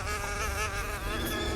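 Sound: wasp buzzing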